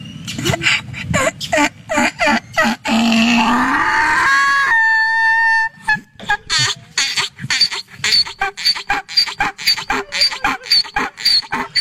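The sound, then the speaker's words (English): A donkey's warm-up and mating call: a run of rhythmic wheezing huffs builds into a long, loud, harsh hee-haw, then falls back into repeated gasping honks. “we're all going to adventure down Donkey Warm-Up and Mating call together”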